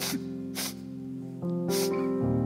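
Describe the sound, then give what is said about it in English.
Three short, breathy sniffles from a gathering of 60 or 70 people in quiet listening prayer, spaced irregularly, over soft sustained keyboard chords that shift pitch partway through. No one speaks. “The sniffles that suggest that there's probably a couple glassy eyes in the house.”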